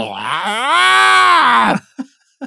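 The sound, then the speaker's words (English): A person imitates a creature's roar with one loud, drawn-out bellowing groan lasting under two seconds, swelling and then cutting off, followed by a couple of faint short sounds. “How does he roar?”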